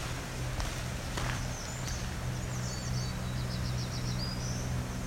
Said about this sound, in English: I would say that's a black-throated green warbler making up a new song. Assuming that doesn't happen very often, because I haven't encountered it yet.